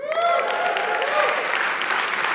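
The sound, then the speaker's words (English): An audience at Celebration Church bursts into steady, loud applause to welcome a speaker, dense clapping filling the whole stretch, with a few voices and cheers briefly rising over it near the start. “Now I want to talk to the people who didn't clap.”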